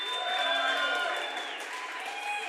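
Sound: audience applause and cheers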